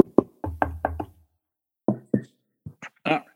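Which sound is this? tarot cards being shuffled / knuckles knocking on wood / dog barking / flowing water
knuckles knocking on wood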